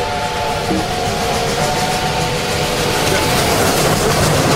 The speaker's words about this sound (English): Well, what is going on? It appears to be a steam locomotive. A train? If I'm not mistaken.